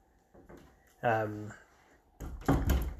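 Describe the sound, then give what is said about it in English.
A door swings shut, ending in a solid low thump after some shuffling noise; a brief voiced sound is heard earlier, with no clear words. “Sorry, closing the door.”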